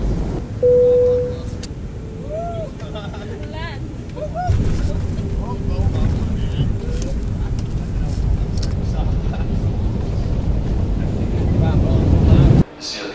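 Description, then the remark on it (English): A steady, heavy low rumble fills the inside of a train moving at 170 kilometres an hour after Amsterdam Lelylaan station, continuous and fairly loud throughout, with faint muffled voices and brief tonal squeals over it before it cuts off abruptly. “We're going at 170 kilometres an hour. Vorige station is Amsterdam Lelylaan.”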